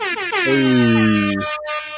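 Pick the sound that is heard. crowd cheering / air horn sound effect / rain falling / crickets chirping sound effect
air horn sound effect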